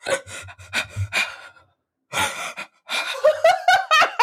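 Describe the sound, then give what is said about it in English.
A person imitates a girl in a 1996 movie: a string of sharp, breathy gasps, several in quick succession, then a pause and more gasps that slide into higher, voiced squeaks, fairly loud. “She just like gasped the whole movie.”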